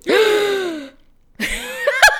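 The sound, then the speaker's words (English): A loud gasp of surprise that trails off in a falling voiced breath, then after a short pause a second, choppier gasp-like vocal outburst. “And I gasped in the exact same cadence.”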